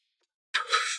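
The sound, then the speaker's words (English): After a brief silence, a breathy rush of air as someone inhales and exhales a hit from a Stizzy cannabis vape cartridge, sounding hissy and airy for about half a second. “So let's have one little smoke toast.”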